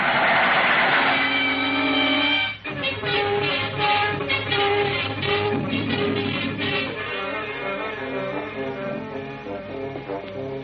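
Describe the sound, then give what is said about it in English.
A loud train rumbles past, its steady mechanical roar carrying a rhythmic clatter of wheels on rails that continues without pause for the whole stretch. “Here comes the train now.”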